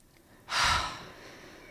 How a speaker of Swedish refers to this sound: Och vet du vad snabbaste sättet att bryta kortisol är? Puste, eller? Andas in jättedjupt.